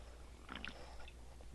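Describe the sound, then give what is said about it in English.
A short burst of wet swallowing as someone gulps down a Hefeweizen beer, a few quick mouth sounds in under a second, quiet and with no talking. “Let me finish this Hefeweizen here.”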